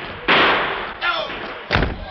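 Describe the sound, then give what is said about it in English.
A back door slams shut with a loud bang as Clay slips out, followed by a rougher scrape and then a second sharp, heavy thud a moment later. “There goes Clay, tucking out the back door.”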